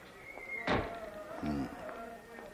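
A door opens and shuts as the Comtesse Zazinia goes through it: a solid wooden thunk followed by a short creaking groan of hinges, then quiet.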